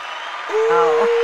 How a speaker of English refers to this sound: we're bringing in that applause here because, yeah, we're about to just have an amazing interview.